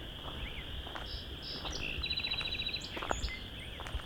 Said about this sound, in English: That was a song sparrow. The west end of Vine Mount Marsh.